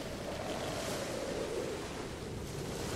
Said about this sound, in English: the noises, the swishing of waves and the slap of water against the ship's sides and the creaking and the overall high, steady roar of air and water.